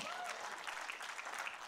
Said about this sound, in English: Make a joyful noise to the Lord, all the earth. Go ahead and clap real quick and we'll get it over with.